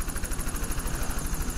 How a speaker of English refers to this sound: The group on the beach watches the helicopter fly off